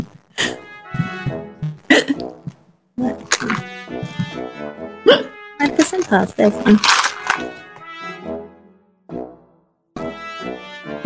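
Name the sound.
hiccups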